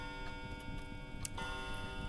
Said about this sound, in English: A clock chimes 4.